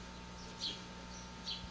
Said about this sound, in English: Okay. Oh, it's like birds.